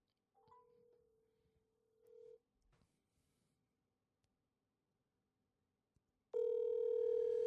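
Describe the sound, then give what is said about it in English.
A phone's outgoing ringback tone: a steady two-second buzz, a few seconds of near silence with faint handling noise, then the tone returns much louder and harsher near the end. “Pick up the phone right now.”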